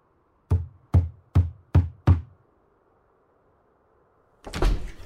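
Five firm knocks on a house door by a door-to-door salesman, in a quick, even rhythm, loud, followed after a short pause by a heavier, longer thud-like sound.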